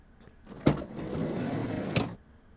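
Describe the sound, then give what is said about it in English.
A door slides open as someone comes through it, with a sharp click, a steady mechanical whoosh for about a second and a half, then another clunk as it stops. Moderately loud, with no voices. “Oh, who's that coming through our door?”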